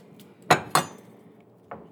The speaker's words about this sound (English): So let's just dive in to where we're back chopping some onions.